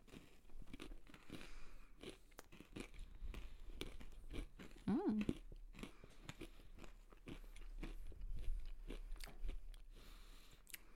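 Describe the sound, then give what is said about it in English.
Steady, crisp crunching of pumpkin pie coated pretzels from the store Casey's being bitten and chewed, with repeated sharp cracks and a grinding rhythm that carries through the whole stretch, fairly loud and without talking. “These are pumpkin pie coated pretzels.”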